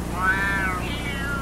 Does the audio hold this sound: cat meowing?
yes